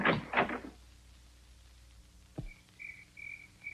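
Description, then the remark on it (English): A cabinet door in an office is slammed shut at night with one sharp, solid bang, preceded by brief scraping movement and followed by faint, high chirping tones. “Later at night, in another office, Charlie slams a cabinet door.”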